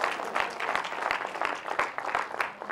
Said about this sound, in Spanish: Den un aplauso de alabanza al Señor porque la oye.